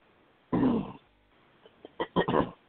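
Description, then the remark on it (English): A person clears their throat: one rough, raspy rumble, a short pause, then a few quicker guttural bursts, with no speech. “Let me clear my throat.”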